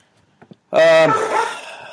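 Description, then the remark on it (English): A single loud, high-pitched puppy bark rings out, drawn out slightly into a yelp, after a couple of faint soft taps. “Hello, puppy.”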